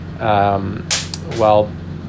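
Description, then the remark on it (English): Rocks being boiled burst apart with three sharp, loud cracks in quick succession, bracketed by two short humming vocal sounds over a low steady rumble. “I have rocks exploding out of my boiling rocks.”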